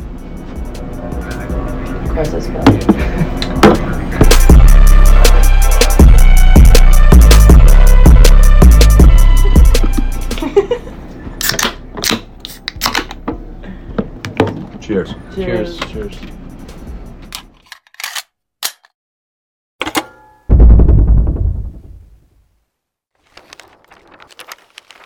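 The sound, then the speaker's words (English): A beer can is cracked open and poured: sharp clicks and a fizzing hiss among loud, rumbling, clattering noise, then a brief burst of pouring before the sound fades to near silence. “I think I just heard you crack a can.”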